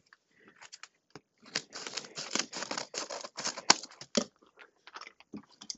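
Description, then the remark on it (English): Scissors snip and crunch through a padded plastic bubble mailer to open a package, a quick run of crisp cuts with rustling in between, tapering into a few scattered snips at the end. “So it is the hot pack, so I'm gonna open it up. Scissors.”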